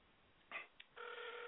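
A telephone rings over speakerphone as a call is placed, through a thin, tinny phone line: a couple of brief bursts, then a steady, buzzing ring tone that holds loud and clear until the end. No one speaks.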